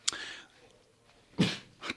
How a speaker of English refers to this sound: Oh dear, oh dear. I just had a little bit of baby cough. He covered it. It's all good.